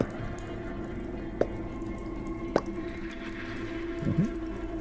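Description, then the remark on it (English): Two sharp drips of blood, squeezed from a cut hand, land in a bowl a second apart, each a bright plink, followed by a softer liquid splash, over a low steady background hum. “You reach your hand across and squeeze, and as you do, a few drops of claret drop from your hand into the bowl with a.”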